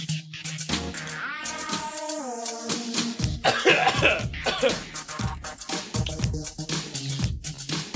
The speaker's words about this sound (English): I'm still coughing.